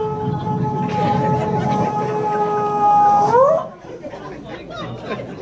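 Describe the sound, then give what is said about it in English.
A man's voice imitates a woman sitting on the toilet first thing in the morning, sounding like a beached whale, with a long, loud, droning moan that ends in a rising squeal, then a burst of crowd noise follows. “Sits in that toilet, sounds like a damn beached whale.”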